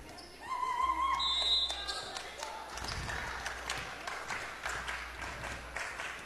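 A short referee whistle sounds, then the server bounces a volleyball a few times on a gym floor before serving in the third set of a match tied 7-7, each dull thump standing out over a steady murmur of crowd noise.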